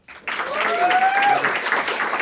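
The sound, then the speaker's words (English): A crowd breaks into loud, sustained applause for the guitarist at a live ukulele performance, after a brief quiet start, clapping dense and steady, with a few whoops and cheers rising through it. “But please also give a round of applause”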